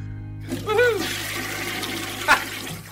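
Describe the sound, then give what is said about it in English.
A toilet flushes with a steady rushing of water lasting a couple of seconds, while a brief vocal sound rises over the start and another short burst comes near the end. “And keep on flushing.”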